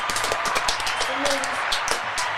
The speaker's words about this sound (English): Round of applause for Moses.